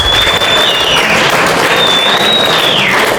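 A crowd applauds steadily at a presentation of a surfboard from the Reverse V project, a dense wash of many hands clapping at once, loud and sustained throughout with no break or voices standing out.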